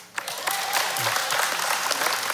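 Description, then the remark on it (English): An audience breaks into applause after a brief pause, a dense, steady wash of many hands clapping that stays loud and even for a couple of seconds with no talking. “Hey, round of applause, and those of you online, you can participate with us.”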